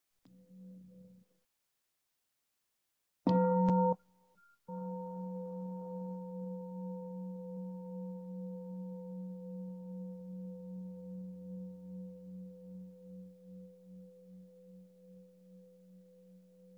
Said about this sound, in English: So I'd just like to give us an opportunity to practice with the sound of the bell. We have a gatha for that too. I listen. This wonderful sound brings me back to my true home.